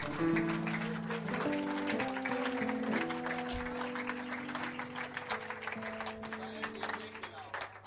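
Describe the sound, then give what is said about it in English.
An audience claps continuously, a dense, steady patter of many hands at an even loudness throughout, over sustained low musical tones and a murmur of voices. “If you are clapping, clap and clap better.”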